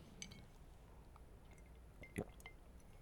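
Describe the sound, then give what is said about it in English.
Someone drinks ice-cold water: soft wet sips and small liquid clicks, then one louder gulp near the end, all quiet with no talking. “Oh, ice cold water.”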